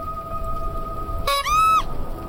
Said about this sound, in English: She was startled when her question was answered by the sound of a horn echoing through the air. I raised an eyebrow. Did he just honk at us? The clown smiled and honked the horn again.